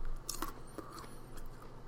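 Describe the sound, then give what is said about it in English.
Quiet munching: someone chewing food, with a few short crisp crunches spaced irregularly over a faint steady background hum and no talking. “I'm sorry I'm munching when I'm doing this stuff.”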